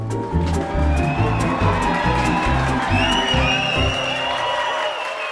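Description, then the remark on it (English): A large crowd of fans cheers and applauds loudly and continuously, with whoops and shouts rising over steady clapping and a pulsing low rumble beneath the roar. “And the sound of our cheering fans means it's time for listener comments.”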